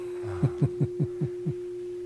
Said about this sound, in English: Just waiting for the fading of the bell.